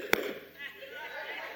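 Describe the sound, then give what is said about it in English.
A quick, sharp double hand clap, loud and smack-like, imitating a smack that sounded like a Baptist double clap, bursts out at the start, then fades into a low murmur of voices talking underneath. “He said, when he smacked, it sounded like one of those Baptist double claps. It sounded like this.”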